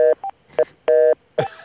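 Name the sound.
telephone line beeping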